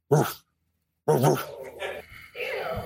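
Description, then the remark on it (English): A person mimics a dog with two loud barks separated by a short pause, followed by a murmur of background voices and noise. “Yeah, my dom would have me eat on the floor, bark like a dog, take me outside, walks, and things like that.”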